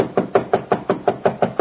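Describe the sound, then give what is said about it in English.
A rapid, steady series of about nine firm knocks on a wooden door, fairly loud, evenly spaced with no voices. “Why didn't you answer my knock?”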